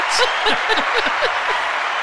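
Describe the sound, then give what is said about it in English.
Steady, dense applause fills the whole two seconds without pausing, a loud crackling wash of many hands, with faint voices or laughter rising briefly underneath. “it's really a long applause. Oh yeah, it keeps going.”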